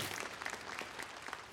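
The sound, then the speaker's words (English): A church audience claps steadily, a dense wash of many overlapping hand claps at an even, sustained loudness with no voices over it. “I don't know if you're clapping about my dying or you.”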